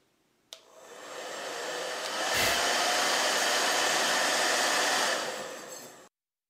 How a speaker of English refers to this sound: The Rev Air. The Dyson Supersonic Hair Dryer. And the Infinity Pro by Con Air Hair Dryer.